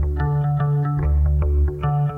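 A bass guitar plays a steady, repeating line of sustained low notes with a shimmering, chorused tone, picked at a regular rhythm, loud and alone with no voices.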